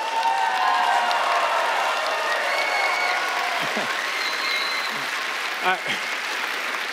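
A crowd cheers and applauds steadily throughout, a dense wash of clapping and whoops, with a few individual shouts rising above it near the end.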